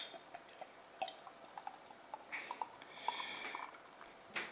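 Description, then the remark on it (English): Golden beer being poured from a bottle into a glass: soft gurgling drips and small liquid plops, swelling into a brief fizzy rush partway through, then a final splash. Quiet, with no talking. “Get this out into my glass and see what I think of it.”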